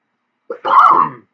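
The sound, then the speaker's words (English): A single harsh cough, starting with a short catch of breath and then a loud, rough burst lasting about half a second, with no talking around it. “Pardon the cough.”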